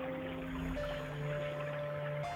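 A steady rush of brownish floodwater gurgles continuously like a small creek as it flows out of a library building right past the doorway, moderately loud, with a faint constant mechanical hum underneath and no voices.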